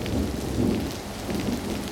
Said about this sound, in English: Night. A light rain taps softly on the glass window of the Sawdust Tavern. It pools between the cobblestones of the road outside, reflecting the glow of the street lamps.